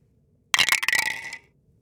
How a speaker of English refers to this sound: our fate is decided by a D20 dice. Marcus, would you be able to roll that for us?